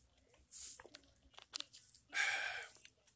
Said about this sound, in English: I'm going to take a sip of water on this because I'm about to rant on this shit.